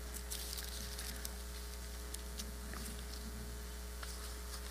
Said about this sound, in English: I like to hear the Bible, the pages turning. That means that you guys are looking at it yourself.